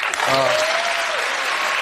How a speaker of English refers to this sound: By the way, don't miss the applause.